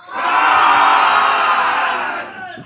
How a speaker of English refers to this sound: I just wanted to start with kind of hearing some things that I've always wanted to hear, which is a theater with a bunch of people in it yelling con. So on the count of three, could you all please yell con? One, two, three.